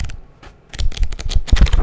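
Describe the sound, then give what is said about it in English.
Crisp rustling of the pages of a thick notebook, about 7x10 in size, with hot pink lines and a gold spiral, being flipped and handled; a quiet start gives way to a busy cluster of dry crackles and flutters, with no voices. “She's thick, and I'm using it right now with like my notes for the episode. Listen to this paper, like, listen.”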